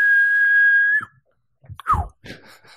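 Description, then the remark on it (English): A person imitates a kettle with a loud, steady, high whistle held for about a second, then stops abruptly, followed by a few breathy vocal sounds. “That's a good whistle.”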